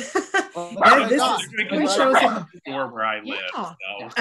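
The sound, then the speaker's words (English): A dog barks and yips in quick, irregular bursts, fairly loud, with a few whiny high notes mixed in and people's voices underneath. “the barking dog”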